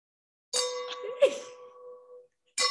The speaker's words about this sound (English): We're gonna clink our wine glasses three times while you soak.